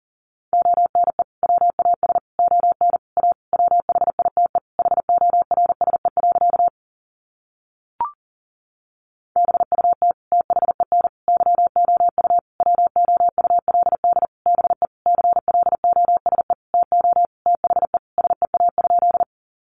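Fast Morse code beeps at 40 words per minute: a single steady mid-pitched tone keyed in rapid dots and dashes, in two long runs split by a short pause with a faint click.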